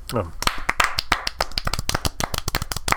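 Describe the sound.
A soft, scattered golf clap from a few people: light, irregular hand claps patter for about three seconds, fairly quiet, with a brief voice at the very start.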